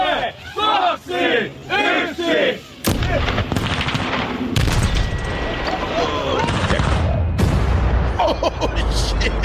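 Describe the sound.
A few seconds of excited shouting voices give way to one huge, sudden blast as a Tesla Model S is blown up, followed by a long, loud roar of rumbling debris and crowd noise that carries to the end.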